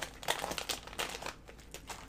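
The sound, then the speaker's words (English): Crinkly plastic candy wrapper being crumpled and handled, a quick series of sharp rustling bursts lasting a couple of seconds with no talking. “Don't tell me to not eat your candy.”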